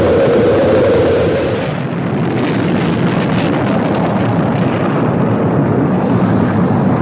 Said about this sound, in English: 5, 4, we've gone for main engine start. We have main engine start.